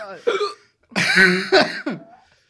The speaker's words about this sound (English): Why am I hiccuping? Oh. Dude, why am I hiccup?